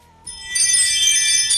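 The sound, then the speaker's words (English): A bright electronic chime from a driveway alert rings out after a brief pause, its tone sustained and rich with overtones, loud, ringing on steadily until the end with no talking. “If they press the doorbell, it rings the doorbell. But I have this one for the driveway.”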